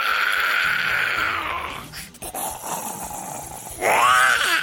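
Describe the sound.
A neighbor running into a room imitates zombie groans: a long, loud, raspy moan that dips briefly, then surges again into a harsher, wavering growl at the end. No other voices or talking.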